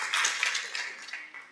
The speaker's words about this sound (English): That's worth the clap.